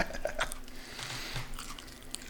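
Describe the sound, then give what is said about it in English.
Wet chewing right against the microphone as someone eats very hot, spicy food, with crunchy bites and smacking mouth noises repeating irregularly over a couple of seconds; no one speaks. “…, stop chewing into the mic.”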